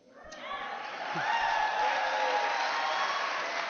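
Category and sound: crowd, audience cheering and applauding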